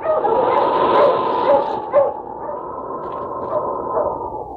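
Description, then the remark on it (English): A dog, Sergeant Preston's wonder dog King in the Yukon, barks and yips repeatedly over a steady rushing background noise that fills the whole stretch, with one sharper louder bark near the middle. “Now back to the days of the gold rush when Sergeant Preston and his wonder dog King battled through storm and snow to preserve law and order as they met the challenge of the Yukon.”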